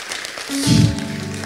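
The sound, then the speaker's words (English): A crowd claps in a dense, steady patter throughout, moderately loud, with a low sustained tone swelling in midway beneath the applause. “Come on, you should clap your hands.”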